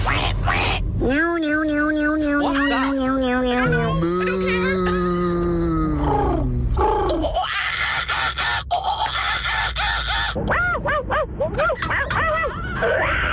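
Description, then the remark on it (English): A person imitates a monkey with loud hoots and shrill screeching calls, rising and falling in pitch across a rapid series of bursts, with no other talking. “The monkey one is unbelievable.”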